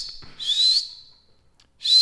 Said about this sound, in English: Wouldn't it be amazing if I learned how to whistle? No, because first you do a really bad whistle, and then you get better with it. You don't just start whistling. Nah, for like fucking 20 years I've been trying to whistle.